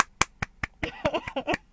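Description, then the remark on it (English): A short burst of applause: about a dozen sharp claps, spaced at first and then quicker and more overlapping, moderately loud, with no talking over it. “Please, a round of applause for my podcast.”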